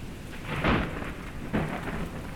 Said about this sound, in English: The boat was being tossed around like a ball. They were drenched with water and the thunder sounded like rocks colliding.